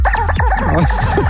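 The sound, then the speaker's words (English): Chickens cluck loudly and busily with overlapping calls, and a rooster-like crow rises through them, all packed into a short, dense burst of farmyard noise with no talking. “Buy a lot of chickens? Got one answer for that.”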